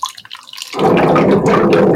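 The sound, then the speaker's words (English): A few light drips give way to a loud, sustained burst of gurgling water bubbles, continuous, as air glugs back up into the plastic jug of a water cooler while water is drawn from it. “When you go to the water jug. Oh, and it bubbles.”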